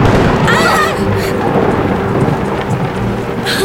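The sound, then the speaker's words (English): A loud, close roll of thunder in a lightning storm, heard on a sailboat on the water, rumbles heavily through the whole moment, deep and booming, with steady rain hissing underneath. “That lightning was close.”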